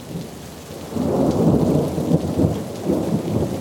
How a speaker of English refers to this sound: And today we had a dreadful thunderstorm, which I had the pleasure of being out in as I was coming from the works. I got rather wet, but I do not think I have caught cold.